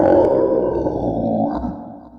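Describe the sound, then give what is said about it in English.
A badly hurt flotsam creature lets out a long, guttural, pained cry, a rough grunting roar with low growling texture that holds steady for about two seconds before trailing off, with no speech over it. “the flotsam one sort of lets out this very animalistic, pained...”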